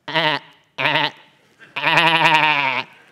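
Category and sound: animal, sheep bleating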